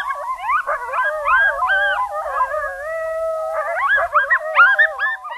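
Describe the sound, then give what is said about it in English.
A coyote family group gives a group yip howl together, several overlapping wavering voices rising and falling in a continuous chorus, fairly loud, with no talking. “Which is one of the reasons why when an ambulance goes by with a siren, sometimes after that you'll hear the coyotes chime in, and the thought is that that siren is thought of as another group starting a group yip howl, so they have to respond to it.”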